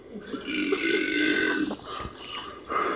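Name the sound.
burp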